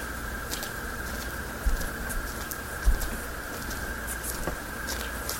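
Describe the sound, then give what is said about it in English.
Faint, quick crunching steps on gravel, irregular and soft, fade out as someone runs off on two legs, set against a steady high-pitched hum and background hiss, with a couple of dull low thumps; recorded at 11:49 p.m. in 2018. “So it's hard for me to hear anything other than someone dashing away on the gravel on two legs.”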